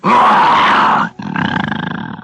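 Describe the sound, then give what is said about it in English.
A man's voice imitates the growl of a bear guarding Mr. Benny's vault: a loud, rough sustained roar for about a second, a brief break, then a second throatier growl that pulses and rattles as it trails off. “He says, can you growl like a bear?”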